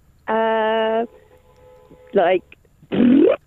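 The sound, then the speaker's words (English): A show guest attempts, using only her mouth, to mimic the sound of tearing paper as an envelope is ripped open, with three loud vocal bursts: a steady buzzy hum, a short wobbling squeak, then a rising, strained tone that sounds more like a zip. “can you do the tearing paper, ripping an envelope open sound effect just using your own mouth?”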